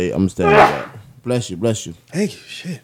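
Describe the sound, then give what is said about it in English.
A single sharp, breathy sneeze bursts out, followed right after by a man speaking a few short words. “Bless you, bro.”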